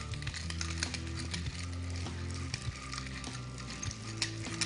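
Zucchini squash sizzles steadily in a frying pan as it is seasoned with cracked sea salt and black pepper, a constant crackling hiss with occasional clicks and light scraping as it's stirred, and a low hum underneath.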